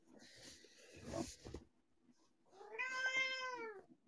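A female pet cat meows twice: a rougher, noisier cry first, then a long, clear harmonic meow that rises and falls, with a short pause between them.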